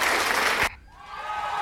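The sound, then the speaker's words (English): A loud, dense burst of clapping and cheering that cuts off abruptly, followed by a softer, sustained whooping tone rising from the quiet. “Key workers, this is for you in the bus. In fact, I'm going to do a cheer too.”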